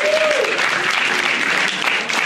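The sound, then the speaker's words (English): A crowd claps steadily, a dense, even wash of many hands with no pauses, holding at the same loud level for the full couple of seconds; an audience at a showing of the film Jingle All the Way, applauding to show how many have never seen it. “By applause, how many people here have never seen Jingle All the Way?”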